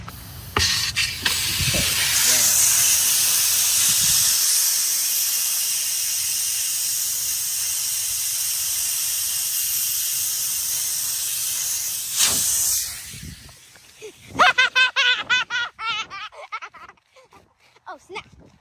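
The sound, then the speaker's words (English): Air hisses loudly and steadily out of a stabbed tire for about twelve seconds, a harsh, bright rush that cuts off abruptly before a voice starts talking. “if you really want to get out of football practice for the weekend, stab both tires.”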